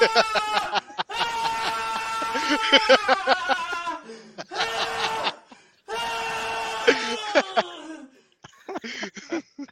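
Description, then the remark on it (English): A voice imitates how Lexington Steel screams, in several loud, high-pitched, drawn-out bursts with brief pauses between them, strained, trailing into shorter, choppy cries at the end. “When he busts one off, he be screaming like that.”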